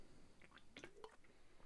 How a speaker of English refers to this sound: that was the sweet sound of me pouring a fucking tequila shot